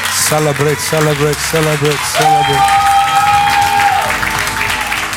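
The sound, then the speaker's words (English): An audience applauds steadily throughout, a dense, continuous wash of clapping, while a man's voice speaks over it in short bursts and then draws out one long sung word. “If this is for you, let your clapping be heard.”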